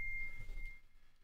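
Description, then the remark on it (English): A phone notification beep from a phone left switched on: one steady, high-pitched electronic tone that holds for about a second and fades, over a low rumbling background with no one talking. “I thought I turned my phone off. I didn't.”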